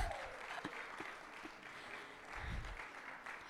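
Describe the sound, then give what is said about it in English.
A crowd bursts into sustained applause for a group of young participants after a game, a dense steady patter of many hands clapping at moderate loudness, with a few sharper individual claps poking out and no voices over it. “Can we give them a round of applause just for their youth and their energy?”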